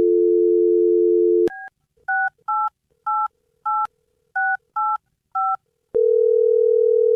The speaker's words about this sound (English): Well, we'll dial her phone up right now, see if we can get her on the phone and find out what happened. Here we go.